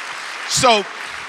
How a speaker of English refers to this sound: Man, would you just give the Lord a hand clap one more time? That's just so good to us.